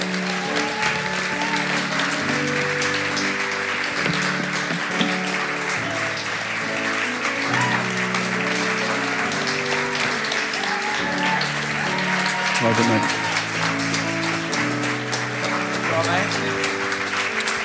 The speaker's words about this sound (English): And yeah, come on, keep clapping for these guys. Come on.